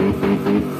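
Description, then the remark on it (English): A voice imitates an engine revving, a short buzzing, droning hum that swells and pulses a few times, close and fairly loud, with no other sounds around it. “Somebody revving their engine.”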